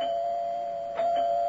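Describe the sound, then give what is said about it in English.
A doorbell at a doctor's door rings as a visitor arrives, in one long, unbroken mid-pitched tone, steady and fairly loud, with a brief brighter jolt partway through. No one speaks. “Will you open the door, Lily?”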